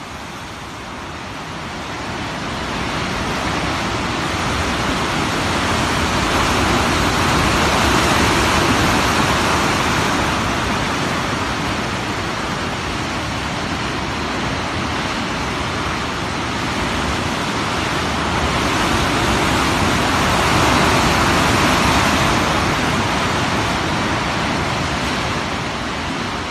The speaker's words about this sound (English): the sound of raw natural power. The North Atlantic crashing into the easternmost point of Canada, Cape Spear, Newfoundland. If you close your eyes, you can almost picture the lighthouse high on the rocky cliffs and feel the ocean spray on your face.